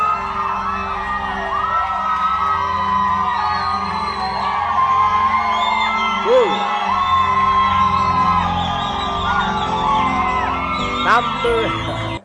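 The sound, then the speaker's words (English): An audience shouts, whoops and cheers continuously as a way of ministering to the Lord, many voices overlapping in a loud, sustained roar with rising yells breaking through now and then. “I'm just saying, one way of ministering to the Lord, it's like you're cheering.”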